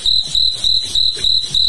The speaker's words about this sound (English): That's when the crickets come in.